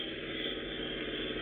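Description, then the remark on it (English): A car engine runs with a steady, even drone and low rumble, holding a constant level throughout with no clear rise or cutoff, as a car with two yellow fog lamps comes back down the street and stops in front of a house. No voices are heard. “It went on down the street. Wait, I think that's it coming back.”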